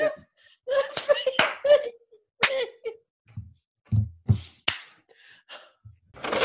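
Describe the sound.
A few sharp, loud hand claps ring out one at a time at uneven intervals as several people take turns clapping, mixed in with bursts of laughter and murmuring voices between them.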